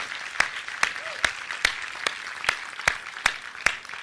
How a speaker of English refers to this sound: Would you guys do me a favor? I know Ben is going to watch this at some point. Would you guys just give Ben a round of applause? It's weird when he's up here for that to happen, but let Ben know how much you appreciate him.